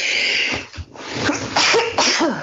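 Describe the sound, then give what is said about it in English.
Someone sneezes, a sudden harsh burst of breathy noise that sputters out over a couple of seconds, with no talking around it. “God bless you.”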